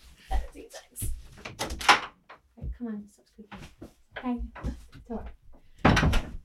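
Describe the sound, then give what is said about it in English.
A door is opened to let a dog in, with a few knocks and rattles of handling, while people talk over and between the clunks. “Speaking of happy hormones, do you mind if I let my dog in because he's squeaking and it's going to really irritate me?”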